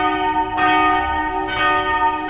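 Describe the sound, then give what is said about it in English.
Church bells ring out with rich, sustained harmonic tones, two strikes swelling about a second apart over a lingering hum, loud with no voices. “I swear, hearing those church bells make me want to go to church.”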